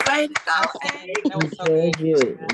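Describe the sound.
Scattered, uneven claps from a few people ring out over loud cheering and whooping voices, close and lively, as a small group applauds together for a couple of seconds.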